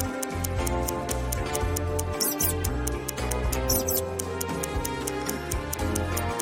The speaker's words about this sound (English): A mouse squeaks somewhere in the room. Inspect the apartment and help Sadfist catch the rodent.